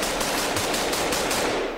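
A loud burst of machine gun fire, a steady run of sharp, crackling shots repeating at an even pace over a dense, noisy wash, with no voices.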